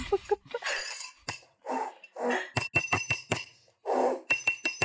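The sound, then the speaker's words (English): A series of bright, ringing clinks of glass tapped together comes in irregular bursts, fairly loud, mixed with breathy rustling noises between the strikes. “Do you want the clinking noise?”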